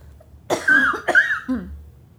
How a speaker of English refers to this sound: and I'm gonna cough.